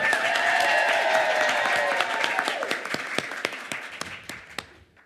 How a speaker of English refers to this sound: Let's have a big round of applause for Colleen Hoover and her amazing Bookworm Box staff